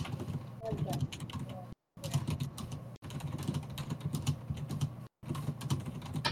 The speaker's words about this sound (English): Ooh, the intense typing. Aggressive typing.